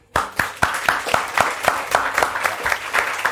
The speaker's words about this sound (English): But also while we're here, let's just say thank you to Fitzcarraldo, who in the 2 years they've been in existence have completely redefined the face of British literary publishing and deserve a small round of applause for doing so.